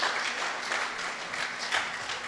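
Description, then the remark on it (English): A crowd at an evening event applauds as Simon Ortiz is invited up, a dense wash of many hands clapping at once with no gaps, holding an even level for a couple of seconds with a few brighter bursts. “And let's give a round of applause to Simon Ortiz.”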